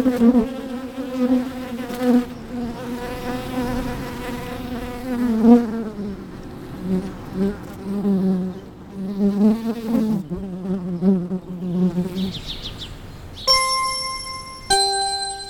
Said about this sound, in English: And as we sign off for another episode of Rootbound, maybe we'll just let the bees buzz us out. Here we go.